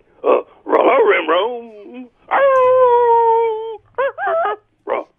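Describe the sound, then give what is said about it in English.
A loud voice imitates a dog: a few short yelping barks, a long wavering howl, then quick whimpering yips and one final bark, with brief pauses between. “Let's go to the dog. Not just any dog. He's a dog now.”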